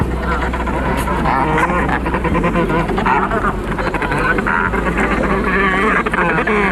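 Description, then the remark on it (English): Dense, raucous braying and squawking calls from a large colony of royal penguins on Macquarie Island, overlapping loudly and continuously with a steady low rumble of wind or surf beneath. “Like this, the royal penguin, endemic to Macquarie Island.”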